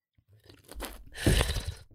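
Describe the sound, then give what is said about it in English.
A wet slurp of wine drawn in with air through the lips while tasting, to aerate it and bring out the flavour: a brief gurgling pull, then a longer, louder, airy slurp that fades out. No one speaks. “And then when you sip, you've got to go...”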